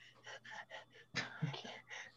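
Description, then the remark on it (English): A person imitates a shaggy polar bear panting with its tongue out: quick, rhythmic, breathy huffs, about four per second, fairly quiet, then a louder rough exhale before the huffing picks up again. “It's still just, like, tongue out. Just panting, like.”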